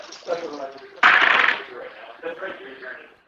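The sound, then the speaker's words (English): A short, bright clattering burst as three dice are rolled at once, tumbling and rattling together, with people talking quietly before and after. “I'll just like to roll them all 3 at once.”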